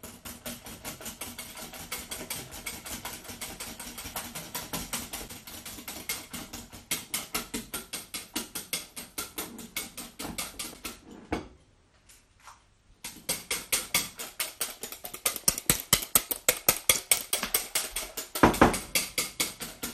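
Rapid, steady scratchy strokes of a whisk beating a syllabub in a bowl, briefly stopping for about a second before resuming even faster and louder. No one speaks.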